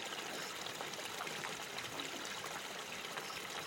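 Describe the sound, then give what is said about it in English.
The water of a wide river gently laps against huge ancient logs resting in it, a steady soft wash with faint splashes and trickles, continuous with no voices. “Listen as the water gently laps against these giant logs.”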